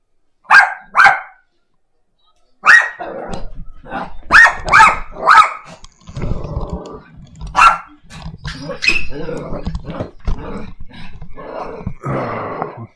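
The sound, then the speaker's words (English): A dog barks loudly in short repeated bursts, starting with a quick pair and then a rapid run, with rough low growling rumbling between the barks. “You gotta get the dog straightened out around here.”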